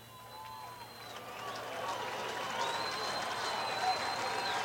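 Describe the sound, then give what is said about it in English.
A ballpark crowd in the Astrodome reacts to a high pitch from Darryl Kyle to Walker, called a ball with two outs and nobody on. Its steady roar of voices and scattered clapping swells slightly louder, with shrill whistles cutting through the noise. “High, a ball. and the natural reaction from the crowd.”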